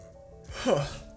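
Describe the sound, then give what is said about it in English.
A single yawn from a tired person: a breathy intake that swells into a short voiced, downward-sliding groan, then fades out. No one talks during it. “I keep yawning. I'm tired, dude.”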